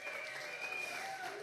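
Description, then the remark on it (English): A crowd applauding and cheering, a steady, dense wash of clapping at even volume, with whistles and shouts rising through it for the whole moment. “prepped you guys and the whole applause thing and like louder, you know, and all that kind of stuff.”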